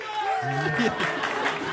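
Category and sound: crowd, audience round of applause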